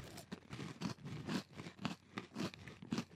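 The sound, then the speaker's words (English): Crunching as someone chews a hard sourdough pretzel, with a steady series of about seven crisp, brittle bites in an even rhythm. The crunches are fairly quiet, and no one speaks. “I love me a crunchy pretzel.”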